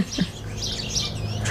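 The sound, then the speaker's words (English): Outdoors, a bird chirps in bright, high little bursts over a steady low background hum with no voices. “Giving this moment of silence, which now I'm talking over, but getting to hear all the sounds of nature.”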